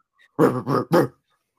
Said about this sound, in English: Ghost Dog. This dumb dog is trying to get in. What do I do? Let him in.